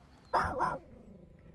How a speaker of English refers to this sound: The dog is barking at the bear.